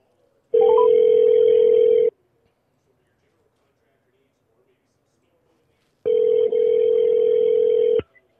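A phone line's ringback tone as a call is placed to a guest during a show: two loud, steady electronic rings about two seconds each, separated by a four-second silent pause, heard clearly with no one talking.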